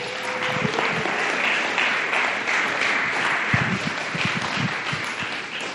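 An audience at a storytelling event applauds the next storyteller steadily, a dense wash of clapping hands that holds at an even, fairly loud level throughout with no speech over it.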